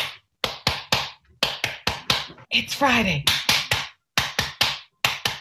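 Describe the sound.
Sharp hand claps in a steady rhythm, grouped in quick sets of three, starting soft and getting louder over three rounds as a clapping routine for students, with a voice briefly calling out midway before the clapping resumes.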